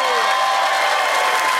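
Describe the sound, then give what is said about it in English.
A crowd applauds and cheers for four panelists being introduced, including Judith Lucy, a loud, dense wash of clapping with whoops and shouts running through it the whole time. “I need four of Australia's finest minds and I have found them and you need to cheer for them.”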